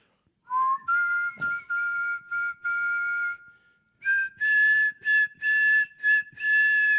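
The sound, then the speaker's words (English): A person whistles a short tune alone, clear, in two bursts of sustained and choppy notes, with added reverb trailing each phrase. “I can't whistle. So can one of you guys whistle?”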